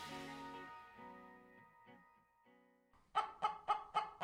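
Chickens cluck, starting with a few drawn-out warbling calls, then breaking into a quick, steady run of five sharp, loud clucks. No one speaks.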